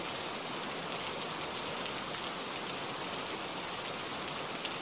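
Steady rain falls without a break, a dense, even hiss of countless drops pattering on a surface. No voices, just the constant wash of rainfall from start to finish.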